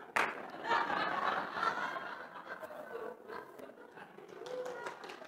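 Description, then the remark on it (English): An audience bursts into applause after a reading of Ecclesiastes chapter 10, verse 2, a dense wash of many hands clapping at once that swells briefly and then gradually thins out over several seconds. “Don't clap for that!”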